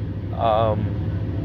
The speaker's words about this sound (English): But currently, it's 2:50 p.m. I'm sitting in my truck recording a podcast,